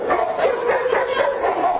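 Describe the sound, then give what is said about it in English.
Several dogs at a doggy daycare bark and yip excitedly in a dense, overlapping flurry, loud, with high-pitched whines mixed in and no pauses between the calls, as they swarm a dog trainer, pull her down and lick her. “It's pure doggy affection. Look at them go.”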